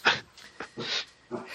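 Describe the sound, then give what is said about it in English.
A dog whimpers and whines in several short, breathy bursts, moderately loud, with brief pauses between each sound. “My dog's saying hi to everyone.”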